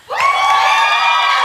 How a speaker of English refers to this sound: And how many of you thought that applause was too loud and your ears are hurting?